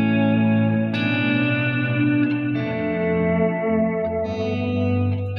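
An electric guitar played through a Keeley signature echo pedal, sustained chords shifting every second or two while repeats smear and trail into each other, loud with no talking.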